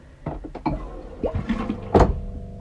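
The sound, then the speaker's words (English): A low-flow toilet in a public restroom unit on Lincoln Street in Sitka flushes: a few mechanical clunks and knocks, then one short, fairly quiet whoosh of water that quickly fades to a faint hum. No one speaks. “The toilets are low flow and surprisingly quiet.”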